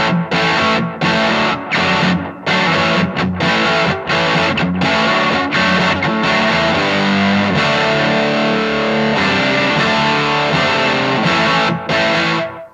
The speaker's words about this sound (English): This is just kind of a rock tone. I've read that it's sort of based on an MXR Distortion Plus. But it's anytime I just need like a rock sound, this is kind of my, you know.